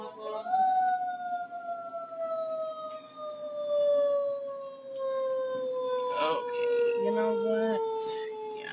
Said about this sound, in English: okay, I hear an ambulance, I mean a fire truck,